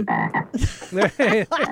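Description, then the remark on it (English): A voice imitates a frog, making a quick series of loud, raspy croaks in uneven bursts with short gaps between them. “Ribbit.”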